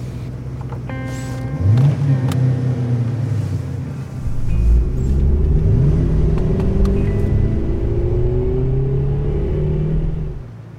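A car engine turns over and catches, settling into a loud rumble with a couple of rising revs, and no voices present.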